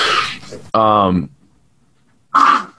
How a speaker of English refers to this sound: Sorry, my dog is barking in the back. Hey, hon, can you grab the dog?